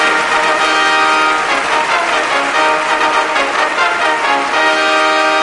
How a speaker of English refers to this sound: Here we go. Kevon freaking Looney. Just give me the trumpets.